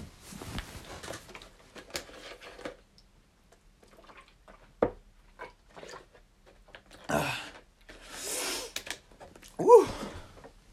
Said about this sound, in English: Let's have a water break.